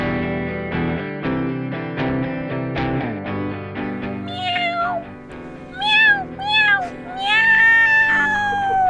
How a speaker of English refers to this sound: That's what a cat sounds like